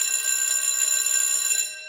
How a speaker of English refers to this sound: A white coat grabbed her, made her stand in front of the new maze's entrance. The bell clanged.